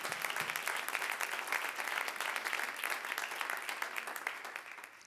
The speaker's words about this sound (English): Why don't we clap to him? How about it? Why don't we clap to him?